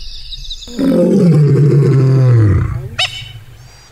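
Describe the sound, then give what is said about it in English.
A lioness hunting wildebeest lets out one loud, close, snarling roar lasting about two seconds and sliding downward in pitch at a male lion trying to mate with her, followed by a brief sharp yelp-like burst, with no talking. Filmed from a truck. “That's that was the sound of me reacting to a lady lion not wanting to have sex because she's hunting.”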